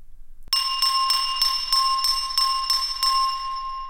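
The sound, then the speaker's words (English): Draco Malfoy taps a spoon on a glass of water about nine times in a steady, quick rhythm, each strike adding to a clear, high, sustained ringing tone that lingers and slowly fades after the last tap. “Then Draco Malfoy took up a spoon in one hand and a glass of water in the other, and began tapping, producing a clear ringing sound.”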